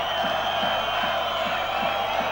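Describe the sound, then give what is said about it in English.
A concert crowd cheers in a loud, steady roar that fills the whole clip, with faint low thumps pulsing at an even beat beneath the noise. No one speaks. “Listen to that crowd.”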